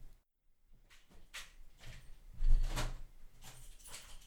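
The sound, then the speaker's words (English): A front door is opened to answer a visitor: a string of latch clicks and rattles, then a heavier thud and scrape midway through. No one speaks. “Just answer the door before she leaves.”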